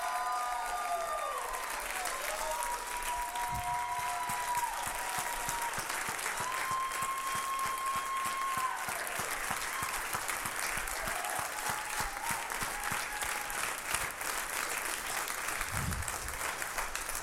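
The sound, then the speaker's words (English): An audience claps steadily and densely for over fifteen seconds to praise God, with scattered shouts and whoops of praise rising above the sustained applause. “I'm going to give y'all 10 seconds to just praise him. Clap, yell, shout, do whatever you want to do.”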